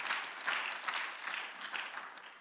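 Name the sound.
audience clapping hands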